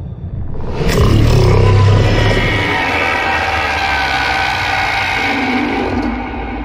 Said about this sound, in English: At the end of the video, there's a strange sound that some in the less than mainstream media have called the Thargoid Roar.